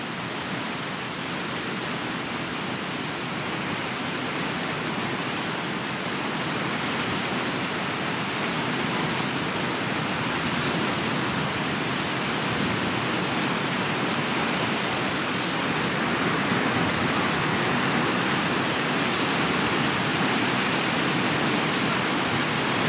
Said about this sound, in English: But I just want to show you a video. It's about 50 seconds of us going on rapids.